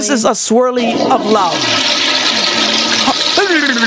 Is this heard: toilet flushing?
yes